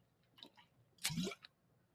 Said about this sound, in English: Sorry if you heard my water bottle